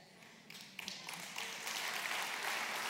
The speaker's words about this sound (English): They're clapping for you, girl.